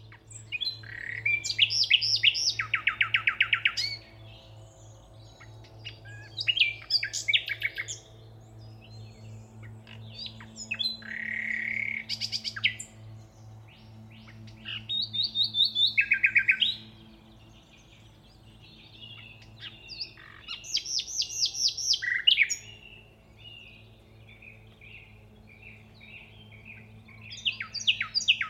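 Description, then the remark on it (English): A nightingale sings a long, sustained, piercing song in bright, varied phrases, rapid trills and whistled notes broken by short pauses, clear over a steady low hum in the background. “So that was The Nightingale, recorded by ….”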